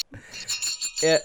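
Small bells worn by a person jingle in several quick, bright bursts, a shimmering high-pitched tinkle shaken in irregular rhythm, with a brief voice sounding near the end.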